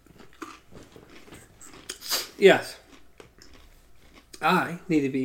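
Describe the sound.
Loud, wet crunching as someone bites into and chews a crisp pickle, with a couple of sharp crunch bursts separated by softer chewing and a short spoken reply.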